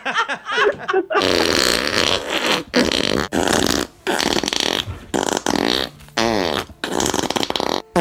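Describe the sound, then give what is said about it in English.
A loud, wet, sputtering fart sound effect representing a Thanksgiving diarrhea blowout rips through in a series of long, noisy bursts with short pauses between them, continuing for several seconds after a brief vocal-sounding opening. “It's a Thanksgiving diarrhea blowout.”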